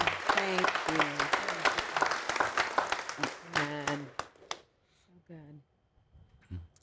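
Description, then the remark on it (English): An audience breaks into sustained applause, a dense patter of many hands clapping for about four seconds with voices calling out over it, then fading into a few quieter voices talking. “We're just going to applaud you.”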